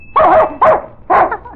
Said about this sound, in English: Why, he barks when you ring it. Though he were trying to sneeze. All right, boy, here's your candy. Oh, I see. Every time he hears the bell, he knows that he's going to get candy. And he barks till he gets it.